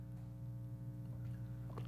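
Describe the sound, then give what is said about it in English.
Someone takes a sip of water: a couple of soft, brief slurping and swallowing sounds over a steady low electrical hum, with no talking. “Take a little sip here since I have no co-host to bank on talking while I take a sip of water.”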